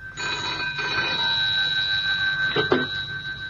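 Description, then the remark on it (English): A telephone bell by a bedside at night rings steadily and fairly loud for a few seconds, with a bright, sustained metallic tone, then a brief clatter near the end as the receiver is picked up. “I couldn't sleep, and so answered at once when the phone rang by my bedside.”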